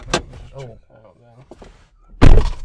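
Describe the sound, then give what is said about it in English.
Someone speaks briefly, then car door locks engage with a loud mechanical clunk at the end, after an earlier short click. “We have to lock the door because we can't see outside and we don't want some creepy ass dude coming up.”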